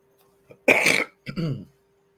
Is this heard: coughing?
yes